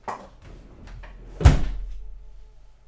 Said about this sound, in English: The door shut, and George was alone again.